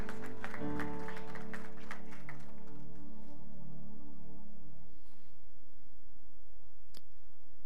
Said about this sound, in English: If you'll come, as a church, can we give him a warm round of applause this morning?